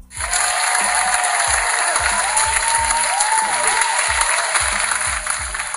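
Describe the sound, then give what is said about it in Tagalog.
A burst of steady, dense applause lasting several seconds, loud and unbroken, with a rhythmic low thumping beat pulsing underneath. No one speaks. “Palakpak muna natin si Alex.”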